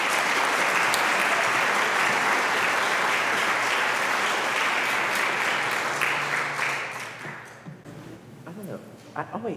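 An audience claps together to welcome a reverend, a steady, dense wash of applause that holds loud for several seconds, then thins and fades out into a few scattered claps and murmurs.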